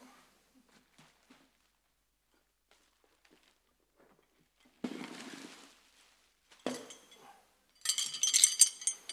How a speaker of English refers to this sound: Small bunch of keys.